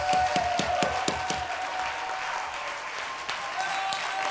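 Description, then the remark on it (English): At a church service, an audience claps their hands to magnify the Lord, starting with a quick, steady beat of sharp claps that then blurs into a dense, continuous wash of applause over a sustained musical tone. “Oh, come on, clap your hands and magnify the Lord.”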